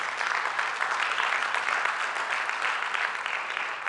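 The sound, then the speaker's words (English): A crowd claps steadily for a few seconds after hearing that over 30 people raised their hands to accept Christ for the first time, a dense, even wash of many hands with no single claps standing out and no voices rising above it. “That, yes, you can clap for that.”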